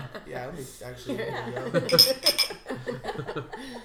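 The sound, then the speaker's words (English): Glasses of rosé wine clink together a few times in a toast, bright short ringing taps mixed in with overlapping chatter and light laughter from several people. “We're drinking Rosé right now. We are drinking Rosé, yeah. Yes, cheers.”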